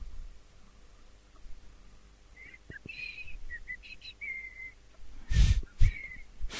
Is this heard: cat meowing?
no